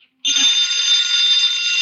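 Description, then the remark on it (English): A telephone rings in one loud, unbroken burst, a bright, shrill, buzzing jangle that kicks in abruptly after a brief pause and holds steady to the end with no voices. “Answer the phone.”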